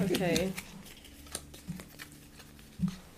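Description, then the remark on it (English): A deck of cards being shuffled before a game, with soft scattered snaps and papery riffles spread across a few seconds, after a brief burst of voice at the start. “I'm gonna shuffle these up, and I'm gonna let you pick the card.”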